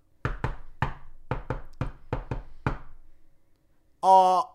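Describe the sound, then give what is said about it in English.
About eight hollow knocks, made with an eye stalk, rap on the wooden door of a house in a slum in a quick, uneven rhythm, then after a short pause a voice briefly calls out. “And he knocks on the door with his eye stock.”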